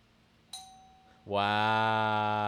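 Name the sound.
doorbell ringing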